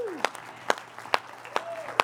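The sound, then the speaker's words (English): An audience in the sanctuary of Connection Community Church claps for God at a Sunday morning service, in a slow, steady rhythm, about five sharp beats half a second apart, with faint voices and a low hum underneath. “Let's give God a hand for this day, eh?”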